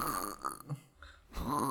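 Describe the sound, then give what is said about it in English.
A person makes a couple of rough, guttural snore-like snorts while awake, voiced imitations with a brief quiet gap between them. “I got a case of the awake snores.”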